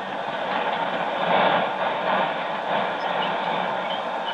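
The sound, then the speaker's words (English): A loud, steady roar from the left jet of a rocket engine fills the whole stretch, a dense rushing drone that swells slightly around the middle and never lets up, with no voices over it. “Major, the left jet!”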